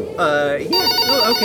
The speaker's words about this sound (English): Hey, I See Robots. Answer the phone, please.